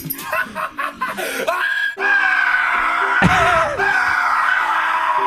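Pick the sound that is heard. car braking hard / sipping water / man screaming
man screaming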